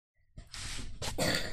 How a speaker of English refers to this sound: Oh, good cough.